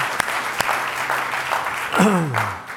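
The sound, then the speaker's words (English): An audience gives a clap offering in a steady, dense wash of applause with a few sharper individual claps, while a voice lets out a falling, sung-out cry near the end. “Now give them a good clap offering.”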